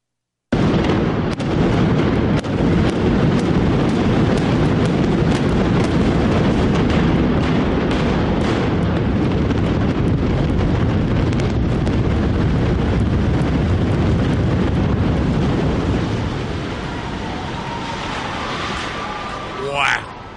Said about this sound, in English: And the crowd went wild. Those were the fireworks of the implosion of Tutwiler,